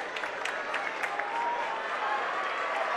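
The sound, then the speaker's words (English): A large crowd at a state final wrestling match stands up and roars, cheering steadily with scattered clapping and shouts in a dense, continuous wash of noise that stays loud throughout. “Modern day crowd stands up, cheers.”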